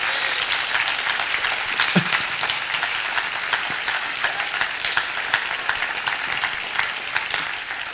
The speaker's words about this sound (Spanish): ¿Qué tal si le damos un aplauso al Señor ahí?